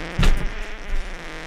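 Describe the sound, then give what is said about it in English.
A short, loud fart, recorded that morning and played back, bursts out with a low, buzzy rumble, then trails off into a fainter sputter and a soft hum. No one speaks. “Clear it out. Clear the colon out”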